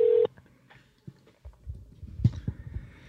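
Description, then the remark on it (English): A phone dialing out: a short, loud electronic tone sounds at the start, then cuts off, leaving quiet, low muffled thumps and faint handling noise. No one speaks. “Let's hope he answers.”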